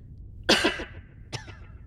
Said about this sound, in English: Link coughed between breaths as burning soot entered his lungs.